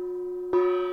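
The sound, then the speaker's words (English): A double gong effect: one resonant metallic strike rings with sustained harmonic tones, then a second, louder hit lands midway and keeps ringing. No one speaks. “Double gong to me.”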